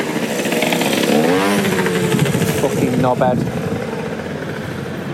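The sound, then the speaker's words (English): A moped's buzzing engine drones for several seconds as it passes a man leaving San Siro after an AC Milan v Manchester United match, while he talks loudly over it. “Some pricks coming past on a moped.”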